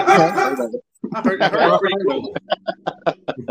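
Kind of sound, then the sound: animal, dog barking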